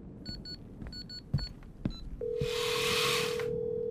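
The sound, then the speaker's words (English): A quick series of short touch-tone beeps as a phone number is keyed in, followed by a steady low tone and a burst of hissing static over quiet background noise. “I think I'm going to call”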